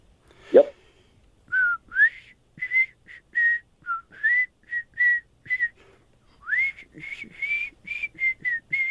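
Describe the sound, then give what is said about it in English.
A person whistles the melody of a song, a run of clear, sustained notes with short gaps and rising slides, preceded by a brief breathy sound at the start. “I'm gonna try to whistle a song, and you have to tell me the artist and the title.”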